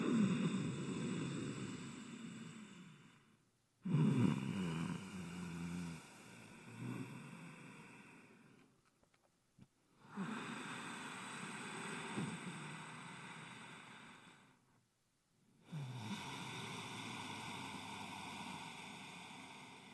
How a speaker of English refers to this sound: So here we go. Here comes ujjayi breath. It goes like this. Let's inhale together.